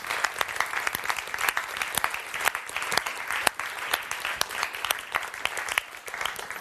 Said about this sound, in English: So can we show our applause and thanks to those people?